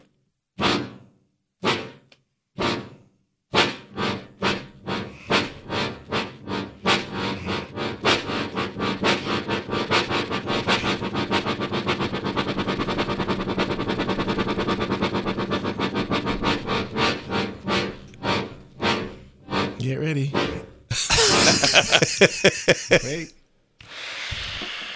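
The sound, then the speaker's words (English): A toy steam locomotive effect: a few widely spaced chuffs speed up into a rapid, steady chugging rhythm, then end with a loud burst of hissing steam. A voice briefly speaks. “Oh, the steam locomotive.”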